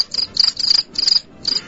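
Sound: crickets chirping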